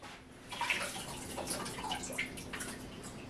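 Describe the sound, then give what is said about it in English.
Water is emptied out of an egg peeler container, pouring and splashing in a steady gurgling stream with scattered drips and sloshes, without any talking. “Let me empty out the water.”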